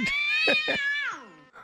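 A kitten lets out one long, high-pitched meow, fairly loud, its pitch sliding downward toward the end, followed by a brief faint chirp.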